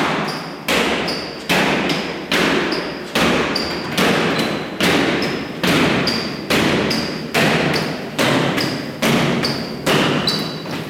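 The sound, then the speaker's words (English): A team stomping in unison, about twenty heavy, evenly spaced thuds in a steady marching rhythm, each with a sharp slap on top. Loud and continuous, with no voices. “Can we like put in an audio of the stomp?”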